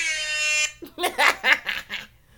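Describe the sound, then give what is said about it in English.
A loud, brassy blast from a new air horn holds steady for just over half a second, then cuts off and is followed by several bursts of laughter. “Dude, this new air horn is the one.”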